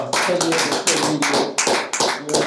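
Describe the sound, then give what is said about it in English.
A small group claps steadily for a couple of seconds to mark someone's 10 years, a dense run of quick, sharp claps with a few voices faintly audible underneath. “We gotta give him a clap for 10 years.”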